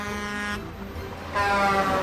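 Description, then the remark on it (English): A loud horn of a truck owned by the Isekai Delivery Service blares in two long, brassy blasts with a short gap between, the second stronger as the truck rushes past. “That truck wasn't there a minute ago, you murderer!”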